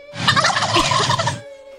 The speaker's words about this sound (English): I do have exclusive audio of one of the crazy turkeys. Let's see.